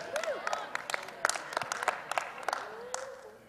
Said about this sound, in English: This side clapped, this side didn't.